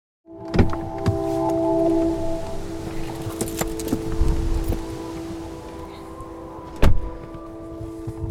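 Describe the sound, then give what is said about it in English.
Inside a car with a steady low hum, a few sharp clunks and a window motor whirring, then a loud door thunk near the end, all fairly loud. “I love meeting people in cars. This is my office.”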